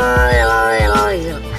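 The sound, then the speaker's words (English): A grumpy cat growl, a sustained, tonal grumble held for about a second and a half, loud, with a few soft low thumps underneath and no talking. “This one is the grumpy growl.”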